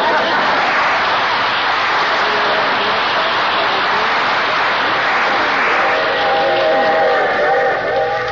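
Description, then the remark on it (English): A moving train rumbles and rattles steadily and loudly throughout, a dense continuous roar, with faint tonal whistling creeping in toward the end. “Boy, I hate these long train rides, especially to see that old gutter inspector.”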